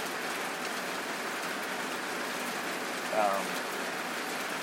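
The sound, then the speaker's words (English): Steady rainfall on a Sunday night hisses continuously at a moderate level, a broad even wash of drops with a faint brief tonal chirp partway through. “It's a Sunday night, a rainy Sunday night, if you can hear the rain.”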